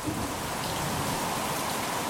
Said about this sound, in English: So it's absolutely bucketing down here. It's about 5 in the morning in Darwin wet season and the power's out.